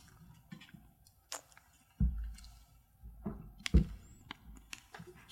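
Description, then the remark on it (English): Someone quietly sips a drink while playing a card game, with faint wet slurping and swallowing sounds broken by a couple of dull low thumps, and no talking. “And before we do that, let's take a sip.”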